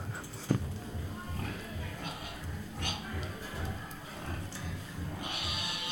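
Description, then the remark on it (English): A pig grunts and snorts in a steady, rhythmic series of low snuffles, with a few sharper noises and a brief hiss near the end. “Let's listen to our pig a bit more.”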